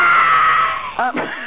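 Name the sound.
scream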